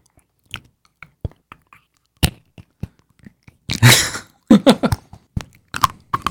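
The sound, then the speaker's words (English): Crunching and chewing on something hard and plastic, with irregular sharp clicks and bites, a louder burst of crackling in the middle, and no talking. “Before you started chewing on something plastic?”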